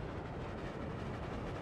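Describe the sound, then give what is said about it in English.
A steady rumble of train wheels click-clacking over the tracks, a continuous rattling roar with no voices, heard from inside a moving train carriage as it passes fields and flower gardens. “likes hearing the train wheels click-clacking on the tracks.”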